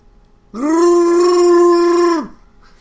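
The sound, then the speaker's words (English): A person imitates Chewbacca's roar: one loud, sustained howling cry lasting under two seconds, swooping up at the start, holding steady, then dropping off, with no other sounds around it. “I'm not doing a Chewbacca voice. Can I do it?”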